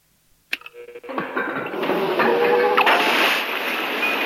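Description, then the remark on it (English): A sharp click as a switch is turned on, then water starts gushing from a pipe overhead and running down a wall, rising quickly into a steady, loud rushing pour that keeps going with no voices. “Okay, when I did that, water started pouring in here, kind of a lot of it. Hmm. It's coming from a pipe overhead and running down the wall.”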